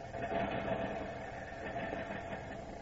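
A car motor runs steadily, a continuous low rumbling hum with a hissy upper layer, holding an even loudness throughout without any voices.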